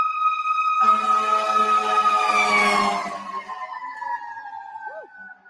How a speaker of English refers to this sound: And I'm sorry, there's a fire engine coming. So hold on 1 second.